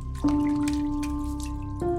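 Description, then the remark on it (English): Water runs and splashes steadily into a sink as someone splashes water on their face, with a faint dripping patter and a low humming tone underneath, continuing for the whole moment with no voices. “I splashed more water on my face and stared at my tired self in the mirror.”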